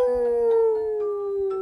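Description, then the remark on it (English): A wolf howls in one long, unbroken note, its pitch held steady and sliding gently downward. The howl is clear and fairly loud, with nothing else heard around it. “They ran and ran and ran until they heard the sound of a howling wolf.”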